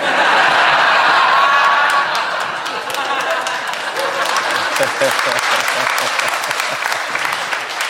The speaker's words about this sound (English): You applaud now.